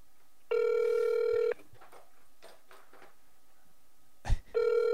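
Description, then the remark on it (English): A telephone call to a CVS store rings with a steady electronic tone lasting about a second, then a quiet pause, a brief thump, and the ring starting again. The ringing is clear, with no talking. “You're like, all right, nobody at this CVS pick up the phone for the next 30 minutes.”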